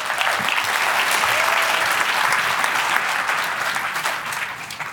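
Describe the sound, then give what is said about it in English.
A crowd claps steadily and loudly for the full five seconds, a dense, even patter of many hands with no voices breaking through, welcoming three coffee professionals onto the Rico stage. “A big round of applause for all of them.”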